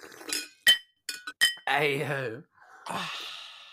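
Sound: glasses clinking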